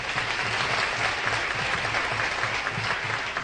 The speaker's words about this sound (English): We'd like to share that applause with our orchestra and our piano players.